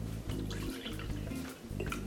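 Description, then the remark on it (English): Coffee concentrate and then water pour into a glass in three short gurgling bursts with brief pauses between them, fairly quiet and with no voices. “Some concentrate. Some regular coffee. I mean, regular water.”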